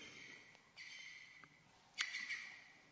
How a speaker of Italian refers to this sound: Qui abbiamo un parco preserva uccelli qua indietro.